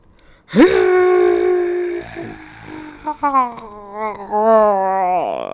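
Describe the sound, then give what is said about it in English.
A person loudly imitates a dinosaur with a long, strained roaring screech, followed by a wavering, warbling cry that rises and falls before trailing off. “Yeah, do your best dinosaur noises.”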